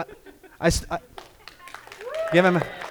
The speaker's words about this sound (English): I appreciate that round of applause.